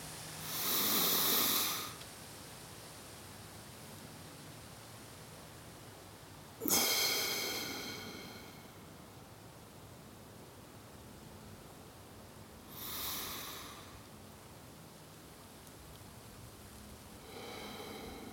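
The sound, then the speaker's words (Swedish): Slow, deep breaths, drawn in through the nose and blown out through the mouth. Three or four long airy breath sounds at a calm, unhurried pace, fairly soft, against a quiet background. “Ta några djupa och långsamma andetag och andas in genom näsan och sen testa att hålla andan någon sekund eller några sekunder och sen blåser ut sen genom munnen.”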